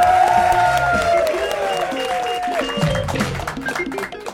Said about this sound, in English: Yes, the crowd went mild.